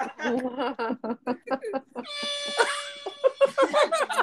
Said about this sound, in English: You just got a foghorn.